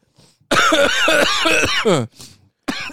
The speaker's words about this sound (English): Dude, remember, for guys who haven't smoked, that, I'm coughing.